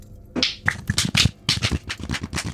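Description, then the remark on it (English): A deck of playing cards given a bridge shuffle: two bursts of rapid, crisp papery fluttering, fairly loud and heard on their own, with a brief pause between them. “And for everyone listening, he's shuffled the cards in front of us.”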